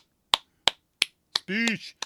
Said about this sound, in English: Actually, let me give you claps, too. Got the drum roll. Got the claps.